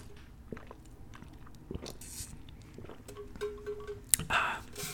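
Someone drinking water: quiet wet mouth clicks and smacks, soft sips and swallows, a louder gulp and breath toward the end, with no talking.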